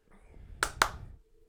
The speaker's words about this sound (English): Oh, you want to clap? I thought you were going to start a song. I'm going to clap for you.